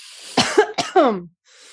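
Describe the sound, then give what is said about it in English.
Two quick coughs in a row, the second slightly longer and raspier, over a faint steady hiss with no talking. “Every time I cough, I'm clearing out the fifth chakra energy.”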